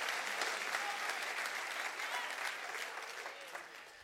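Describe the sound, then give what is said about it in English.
A church audience applauds steadily for about four seconds, a dense wash of many hands clapping at a fairly even loudness that eases slightly toward the end, with faint voices mixed in. “Clap your hands to that.”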